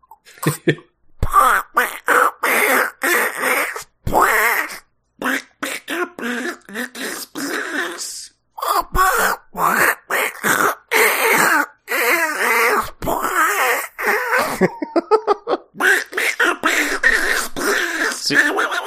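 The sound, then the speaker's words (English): A voice does a strangled, raspy impression of Donald Duck as he is being run over by a steamroller: a long run of choppy, squawking bursts with brief gaps, fairly loud throughout. “See, I was doing it where Donald Duck says that as he's being run over by a steamroller.”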